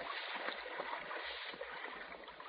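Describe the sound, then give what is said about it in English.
Small waves lap softly and continuously against the shore of an underground lake in a cave, a steady low wash of moving water with gentle irregular splashes, quiet, with no voices. “It's like a lake. Or maybe a sea. There's little waves.”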